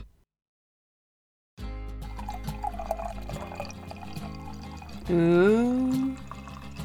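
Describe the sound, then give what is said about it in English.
After a moment of silence, beer pours steadily into a glass, a gurgling, fizzy stream whose pitch rises toward the end as the glass fills. “Do you know what that sound means? It means I have a beer and you don't.”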